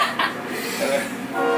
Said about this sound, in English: pause for a minute. We'll let the train go by. That's right.